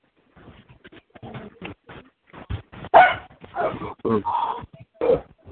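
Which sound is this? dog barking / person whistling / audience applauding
dog barking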